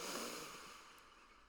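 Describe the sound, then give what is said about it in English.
A single deep, airy inhale drawn in through the nose, fairly soft, with a breathy hiss that swells at the start and slowly tapers off. No one speaks. “So let's take a very deep breath in through the nose.”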